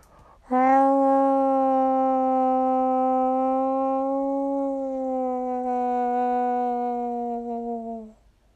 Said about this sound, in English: So I ran to the forest and hoped I'd lose her, or something. I didn't make more than 5 steps when I heard a blood-curdling shriek of a howl.